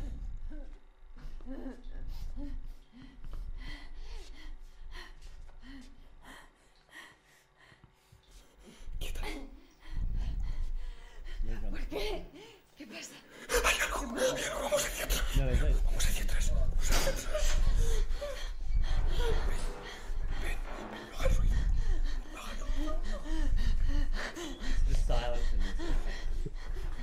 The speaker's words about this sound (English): Just the heavy breathing as well. That's what gets you.